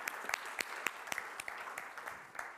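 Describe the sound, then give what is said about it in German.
An audience applauds steadily after a talk and Q&A session, a dense patter of many hands clapping with sharp individual claps standing out, fairly soft overall and with no voices. “Ich denke, das ist nochmal ein Applaus wert.”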